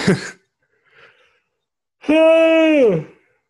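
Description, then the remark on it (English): A loud yawn drawn out for nearly a second, voiced and steady before its pitch sinks at the end, following a brief breathy sound and a faint pause. “That's a yawn.”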